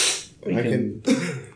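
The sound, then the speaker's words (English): A quick, breathy sniff, followed by two low, rumbling bursts of throat clearing in a row, with no speech. “Also, apologize for the sniffing and everything.”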